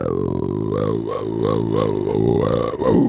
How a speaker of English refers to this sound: That was Riff Raff's message, dude. All he did was just burp. Couldn't hear anything.